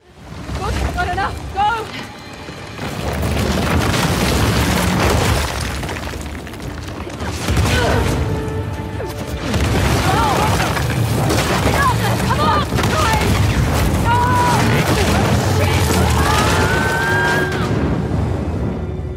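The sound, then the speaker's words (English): Video game explosions and destruction: continuous loud rumbling booms and crashing debris, dense and chaotic like large-scale explosions and collapsing structures, with shouted voices and whooshing blasts layered throughout. “something here from Uncharted that kind of lends itself more to the adventure-y stuff, which is like the explosions and that big kind of destruction”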